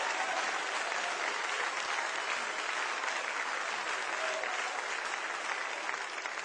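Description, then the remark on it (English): An audience claps their hands in a steady, dense wash of applause that holds at an even loudness for several seconds, with no voices standing out. “Let's clap our hands unto the Lord all over the house.”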